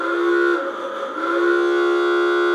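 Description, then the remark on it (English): A vintage German klaxon car horn, the old type commonly used on Model Ts and other vintage automobiles, blares loud, a raspy, buzzing honk that sags briefly in the middle and then swells back to a steady, sustained blast. No one speaks. “And we have a klaxon, which is the old German horn commonly used on the Model Ts and the old vintage automobiles.”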